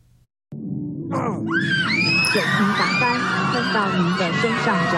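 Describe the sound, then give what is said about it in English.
Simulated panicked screams from several voices, played by a fire-safety training VR headset, rise and overlap above a loud, constant roar of flames, kicking in abruptly after a brief quiet moment and staying intense throughout. “The sounds of screams and flames come from this VR headset.”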